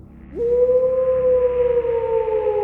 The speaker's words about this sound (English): A howl that was neither wolf nor wind, but something else, something ancient and filled with a terrible longing. It reverberated through the valley, shaking the very air, leaving behind a silence that was suffocating.